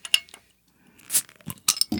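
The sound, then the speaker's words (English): Glass clinks sharply a couple of times, then a short hissing burst as the cap comes off a bomber-style bottle of Celestial beer by Save the World, brewed in Marble Falls, Texas, followed by more light clinks and rattles of the bottle being handled. “Well, save us from these last 2 minutes and pour us a beer. All right. You got to open it first.”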